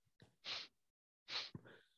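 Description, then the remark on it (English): A voice imitates sniffling: two sharp, hissy sniffs about a second apart, each with a soft breathy lead-in, and a brief throaty sound trailing after the second. “Cringy or not, sniffling. You're sitting somewhere and you keep hearing some go.”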